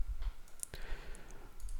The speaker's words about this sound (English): If I select this, you can see that we can change the pattern. And it's just as simple as clicking the button.